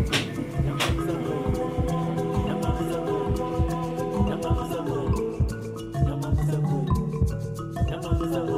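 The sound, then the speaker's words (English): A fast, steady heartbeat thumps low and regular beneath gentle melodic music from a CD, the pulses repeating evenly throughout with no voices. “Somehow the music along with the heartbeat, I don't know, somehow that CD will never be the same when we listen to it.”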